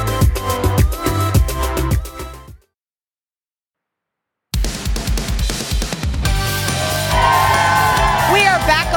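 A crowd gathered for a morning TV show on a pleasant, slightly breezy Tuesday, 29 August, cheers and whoops loudly, with rising and falling shouts over a dense roar. The noise cuts out to silence for about two seconds before the cheering returns.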